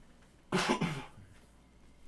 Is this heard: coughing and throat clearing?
yes